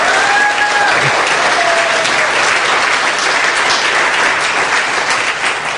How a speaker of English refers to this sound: Oh, come on, we can clap better than that. Come on.